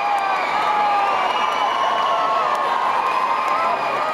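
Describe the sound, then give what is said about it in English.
A crowd of thousands of teenage girls screaming together, a dense, high-pitched roar that stays loud and unbroken throughout with no single voice standing out. “close your eyes and imagine thousands of screaming teenage girls.”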